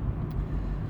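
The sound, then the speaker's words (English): A steady, low rumble of road noise inside a moving car driving home from Brighton on a cold day, about 5 degrees outside; a constant drone with no voices or other distinct sounds over it. “My car's external temperature sensor is saying it's 5 degrees outside, and that's probably being generous.”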